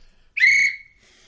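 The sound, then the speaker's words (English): A single sharp, loud whistle blast, shrill and steady for about half a second before trailing off into quiet. “We've got the whistle.”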